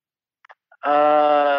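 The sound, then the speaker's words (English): After a few soft clicks, a single loud, drawn-out goat bleat rings out for nearly a second, steady and nasal. “Yeah, so the goat.”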